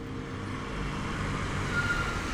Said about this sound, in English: And then I heard a truck come up behind me. And this guy pulls up. He's got this I think it was about a 60 Ford pickup, blue and white.